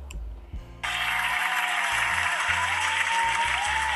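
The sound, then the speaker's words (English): A short burst of applause breaks in abruptly after a low rumble and continues as dense, steady clapping to the end, fairly loud, with no voices. “It was short applause, but still.”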